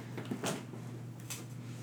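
The pet cat Demetrius claws at a door, two short scraping bursts about a second apart, fairly quiet over a steady low hum.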